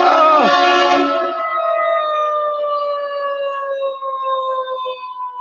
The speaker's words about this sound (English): There's a lot of cops and ambulance down here.